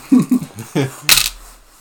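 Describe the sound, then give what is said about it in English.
Dice rattle and clatter across a table in a few quick hard clicks as damage is rolled for a natural 20 in a tabletop game, ending in a sharper, brighter tumble before settling into quiet. “I want you to roll damage for the 20 because I'd like to see how much you do.”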